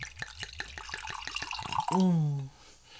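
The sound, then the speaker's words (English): Wine glugs out of a bottle for tasting while punch is being made, in a quick, steady run of about a dozen gulps, followed by a brief, loud, low hum from a voice. “We should go ahead and taste the wine too.”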